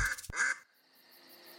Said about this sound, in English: Her family quacked with relief and delight.